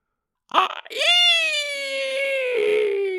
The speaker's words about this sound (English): It makes the hideous shriek once more. And then vanishes from view.